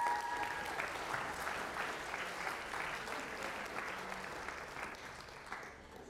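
A crowd applauds steadily for about six seconds, dense overlapping claps holding a fairly even level before easing slightly at the end, with faint voices mixed in at the start.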